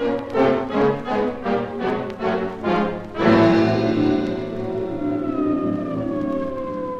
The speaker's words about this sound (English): Yes, already the sirens of the police vehicles converge upon this place. They'll have the riot squad out.